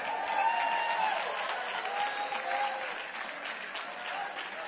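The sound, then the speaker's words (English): Steady audience applause, a dense wash of clapping hands that holds at an even, fairly loud level throughout, with a few faint cheers or whistles riding over it. “Your applause has encouraged me so much.”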